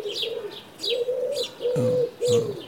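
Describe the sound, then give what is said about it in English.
A wood pigeon coos in a steady, rhythmic phrase of soft, hollow notes, clear, with higher bird chirps repeating faintly in the background. “That's the wood pigeon.”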